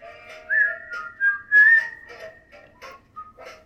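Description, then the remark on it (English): A bright, tuneful whistle carries a TV theme melody, gliding between sustained and short notes in a bouncy, moderately loud line, with no talking over it. “I just think of Jimmy's bird that whistled it.”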